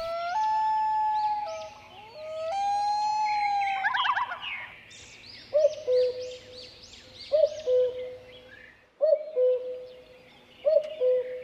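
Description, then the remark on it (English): A loon's long, wavering wail rises and holds for a few seconds, then a cuckoo repeats its two-note call four times at a steady, unhurried pace, clear, with no talking. “She's using our beloved loons and cuckoos to lure me with her famous calls.”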